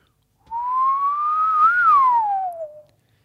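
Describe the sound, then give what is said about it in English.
A man whistles in the front clearing area outside the opened gates: a single sustained whistle, rising gently in pitch then sliding down, lasting about two and a half seconds, clear with a faint outdoor background and no talking. “will make his way out into the kind of front clearing area and whistle.”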